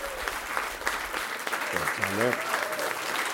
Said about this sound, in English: A big round of applause.